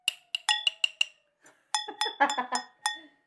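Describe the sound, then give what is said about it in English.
Mugs clink together in a toast to kick off a party: a quick run of bright, ringing taps, then more knocks mixed with brief voices and laughter. Fairly loud. “Well, should we cheers and kick the party off? Yeah, let's go ahead. All right. Cheers. Yeah, this is a mug.”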